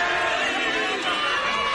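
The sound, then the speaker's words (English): A large crowd in St. Peter's Square, Rome, on a Sunday, as Pope Francis addresses them on his 87th birthday, fills the air with a steady, loud wash of overlapping voices and cheering, a dense murmur without any single clear word standing out. “Pope Francis celebrated his 87th birthday today, addressing the crowds in St. Peter's Square as customary on a Sunday.”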